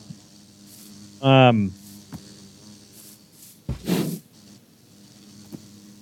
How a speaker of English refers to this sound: So we have a couple of cool ones: bees and parrots. So that's a bee. Ooh, whoa.